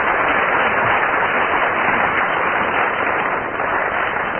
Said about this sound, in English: Very good. Round of applause.